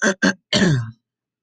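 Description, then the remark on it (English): A loud throat clearing by a person reading the news aloud: two short sharp rasping bursts followed by a longer, gravelly clearing sound that trails off, with no talking. “Sorry about that. Clear my throat.”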